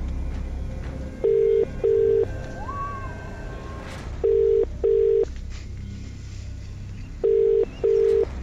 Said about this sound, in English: Remember, you need to answer the phone within five rings and know today's featured artist. Are we ready? Let's call the person then who's been randomly selected.